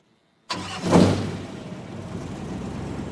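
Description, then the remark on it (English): A tugboat engine cranks and catches with a sudden loud burst, roars briefly as it revs, then settles into a steady, low rumbling idle. “The boat's engine started.”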